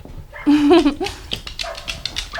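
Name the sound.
dog barking and whimpering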